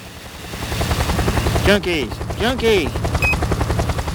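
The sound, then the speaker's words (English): Loud rotor noise from a yellow helicopter flying over East Los Angeles: a rapid, steady thudding chop that continues throughout, with a couple of brief vocal sounds rising over it partway through. “Sky 600, the yellow chopper in the sky”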